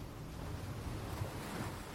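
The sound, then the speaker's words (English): A steady, continuous wash of ocean surf rolls onto a beach without pause, a broad low rumble of water with a faint airy hiss on top. No voices, just the even sound of waves. “Yes, the tide has crept inwards, and the water is seeping up across your stomach.”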